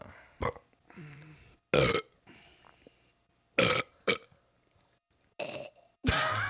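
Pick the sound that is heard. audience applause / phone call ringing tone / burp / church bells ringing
burp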